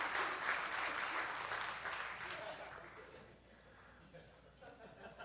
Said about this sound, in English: we'll be married for 12 years next month. 12 years. Yeah, you can clap. Thank you. Thank you.